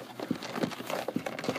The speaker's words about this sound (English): You doing ASMR with them dice? That's dice. We've got a 6-sided, a 20-sided.